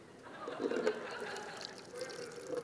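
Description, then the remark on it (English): Bottled water pours steadily into a small recycling container from a hotel room for a few seconds, a continuous splashing trickle with a gently rising, hollow tone as it fills, fairly quiet overall. “poured out. That's $2.50 worth of water that's just, it's no good anymore.”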